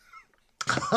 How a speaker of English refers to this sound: Have you warmed the beans or are they cold? Nah, cold, straight from the tin. Oh, excellent. Go on, so, give us a nice loud slurp of beans.